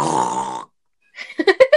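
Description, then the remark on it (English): A person imitates a pig with one long, rough, throaty squeal. After a short silence come about five quick, rhythmic grunting snorts. It is loud and burp-like, with no speech. “Also, let's hear my pig impression.”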